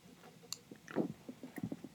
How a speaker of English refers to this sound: If you heard me take a drink, I apologize.